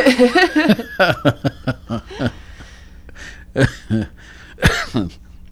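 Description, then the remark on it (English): A burst of chuckling laughter gives way to a few sharp coughs and throat-clearing sounds, scattered irregularly with short quiet gaps between them. “Get me coughing here.”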